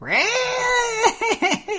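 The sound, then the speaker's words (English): A video game spell effect, heard each time anybody casts a spell in battle, that screeches like a cat: a shrill, rising, sustained wail breaking into several quick warbling yowls, loud, with no one talking. “Every time anybody casts a spell in battle, I characterized it 9 years ago as cat stuck in a blender.”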